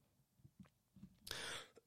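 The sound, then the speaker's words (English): A single raspy cough bursts out after a few faint low rumbles, followed at the end by the sharp onset of a second forceful cough; no one speaks. “Old cough there.”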